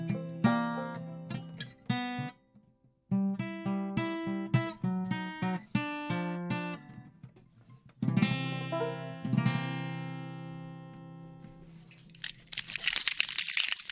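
A melodic instrumental passage of plucked or struck notes ends, then a short burst of scattered, thin applause from the few people of a small studio audience follows for about a second and a half.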